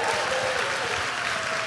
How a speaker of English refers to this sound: Give her a round of applause. Round of applause for Lee.